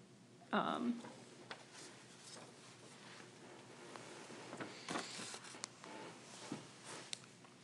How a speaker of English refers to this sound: Pardon our silence there. I was making some notes on the paper here.